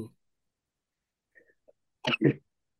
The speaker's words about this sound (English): Sorry. I just sneezed. Bless and you. Then, thank you.